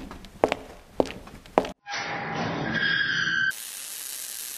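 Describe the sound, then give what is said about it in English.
Three heavy, evenly paced footsteps thud in a basement, then a burst of crackling electrical sparks from a generator whose wires have been cut, with a rising buzzy whine, settling into a steady fizzing hiss. “Footsteps are heard, then sparks are heard.”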